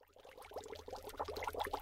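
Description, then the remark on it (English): A block of dry ice bubbling away as it sublimes straight to CO2 gas, a steady, busy burble of gurgling pops and fizz that builds slightly after a soft start, with no voices. “While my block bubbles itself to oblivion”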